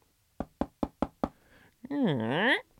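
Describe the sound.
Five sharp, evenly spaced knocks on a door ring out clear, followed by a brief burst of a loud, wavering voice.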